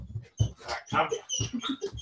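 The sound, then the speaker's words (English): A dog squeals and whimpers in a rapid series of high, excited yelps, fairly loud, with short pauses between bursts and no talking. “You're going to hear my dog, dog squeal for the next minute.”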